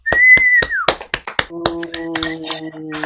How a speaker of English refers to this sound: You guys can unmute yourselves and a big round of applause.